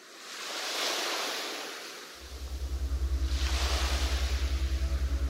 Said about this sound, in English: The binaural soundscape is waves.